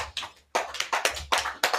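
Brief hand clapping from a few people: sharp, overlapping claps in an uneven patter, fairly loud, with a short pause near the start and no talking.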